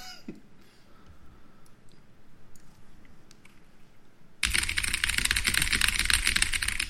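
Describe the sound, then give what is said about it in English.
Scattered keystrokes clack on an extremely loud computer keyboard as someone types notes, then the typing turns into a dense, rapid rattle of keys that fills the last few seconds. “Let me pull out my extremely loud keyboard.”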